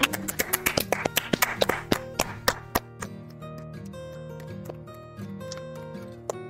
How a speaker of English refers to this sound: When we clap, that means we're happy. Do you guys understand that? Does that make sense to everyone? When we clap, that means we're happy.